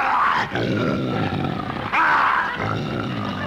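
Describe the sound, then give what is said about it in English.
A loud roar from a lion in captivity rumbles in rough, throaty surges, breaking briefly twice before swelling again, with no voices over it. “Rex, the king of the jungle, the most ferocious lion in captivity.”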